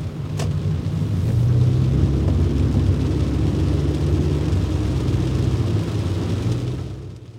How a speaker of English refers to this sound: As I returned to my car and headed back toward flatter ground, it started to pour.